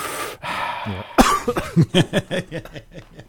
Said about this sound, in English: Sorry, I just coughed and I forgot to press the button because I was too busy coughing. That cough took longer than the McLaren pit stop.